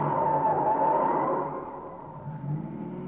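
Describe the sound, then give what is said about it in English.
A car engine hums steadily, then eases off partway through as the vehicle slows and turns right at a corner on a dark street after midnight, continuing at a lower, even drone with no voices. “Turn right at the next corner. That car's been tailing us for the last 5 minutes.”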